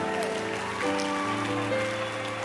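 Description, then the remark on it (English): A church audience claps in a dense, steady burst that runs the full length, with a sustained tonal hum of music or voices beneath the applause, clapping for the fasting sisters. “Clap for fasting sisters.”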